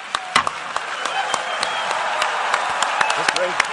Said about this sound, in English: A thunderous applause and a standing ovation as global leaders and representatives of human rights organizations endorsed the new Sustainable Development Goals.